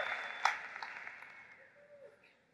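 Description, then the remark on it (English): A brief, scattered smattering of light, polite clapping (a golf clap), soft and thin, with a few individual claps standing out before it quickly fades away. No one speaks. “Seriously, I just told you one of the most vital, most important truths ever, and you give me a golf clap?”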